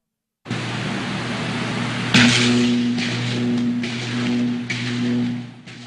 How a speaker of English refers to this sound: You ever heard a transformer explode? It's pretty loud. Here's one.